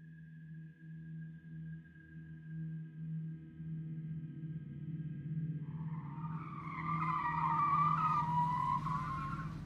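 A car engine hums steadily, then tires squeal loudly for the last few seconds as the car turns and pulls into a parking spot in an empty lot at night. No one speaks.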